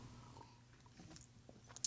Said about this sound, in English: Switching it up on you guys, actually sipping on some red wine.